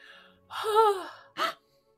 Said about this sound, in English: What are you gasping at?